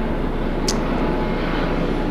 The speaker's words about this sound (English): Okay, lots of helicopter action here.